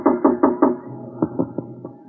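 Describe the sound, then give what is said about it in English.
Knocking on an office door: a quick run of four firm raps, a short pause, then four softer, more hesitant knocks. Fairly loud, with no voices. “There was a knock on my door.”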